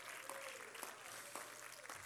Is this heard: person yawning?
no